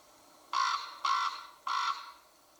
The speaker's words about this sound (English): So now, first of all, we're going to have the sound of a raven. And I want you to reflect on how you feel, how this sound of the raven makes you feel.